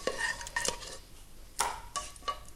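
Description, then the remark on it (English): Light clinks and taps of dishes as three panna cottas are taken out of their moulds and set onto individual serving dishes, about five sharp knocks spread unevenly over a few seconds, with a faint scraping between them and no talking. “All right, that's one there, and I'm just going to take the other 3 out of their moulds in exactly the same way and pop onto individual serving dishes.”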